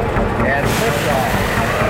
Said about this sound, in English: Liftoff of the 25th Space Shuttle mission, and it has cleared the tower.